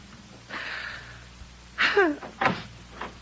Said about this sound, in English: Did I hear the front door slam? Was that wonderful, wonderful sound Agnes making her final exit from my life?